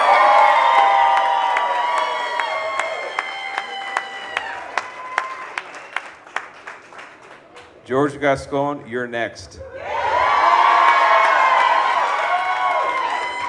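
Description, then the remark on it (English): A crowd at a rally cheers and chants with scattered clapping as Sheriff Alex Villanueva takes the stage, loud, briefly giving way to a single voice speaking before the cheering swells up again. “A bit of applause”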